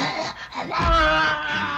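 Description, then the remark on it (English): A possessed girl, the character Regan McNeil from the film The Exorcist, pants hoarsely: a short raspy breath, then a longer strained, moaning exhale with a gravelly low rumble underneath. It is loud and voiced, with no speech. “The character's name is Regan McNeil, and this is the character panting.”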